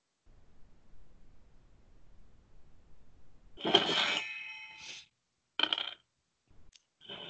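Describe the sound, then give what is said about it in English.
Dice are rolled across a hard tabletop during a tabletop role-playing game and come up 7: a soft rolling rumble, then a bright burst of clattering clicks, followed by two or three shorter rattles. Fairly loud, with no voices. “Roll 7. Damn, these are some shitty rolls. The dice are betraying us.”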